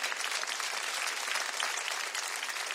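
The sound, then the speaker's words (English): An audience claps for the Navy veterans present, a dense wash of many hands clapping at once with no pauses, loud and even throughout. “Give it up for the Navy.”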